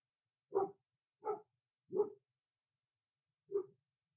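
Dogs bark four times: three sharp barks in quick succession, a short pause, then one more. Clear, with no talking and silence between the barks.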